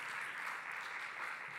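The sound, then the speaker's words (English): An audience at Renew Church claps continuously after hearing that 11 people were baptised in 2021, a dense, steady wash of many hands with no individual beats standing out, holding at an even, moderate level throughout without any voices. “You can still keep clapping.”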